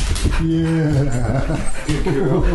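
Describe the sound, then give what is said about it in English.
A pit bull whimpers to be let in, in a string of drawn-out, wavering whines that rise and fall in pitch, fairly loud and continuous for a couple of seconds. “Mothers are going to hear this dog crying in the background.”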